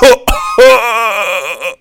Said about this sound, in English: I ain't got COVID. I'm just coughing.